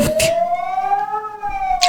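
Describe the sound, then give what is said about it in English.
A civil defense alarm siren sounds the alarm signal, telling people to move to their closest shelter immediately, in a steady, loud wailing tone that rises slightly and holds, with brief noisy bursts at the start and end. “This alarm is called the alarm signal, which means that you have to move to your closest shelter immediately.”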